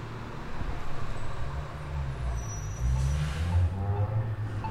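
A heavy garbage truck rumbles along a residential street in San Francisco, its deep engine drone steady throughout, with a brief hiss of air brakes midway amid general traffic noise.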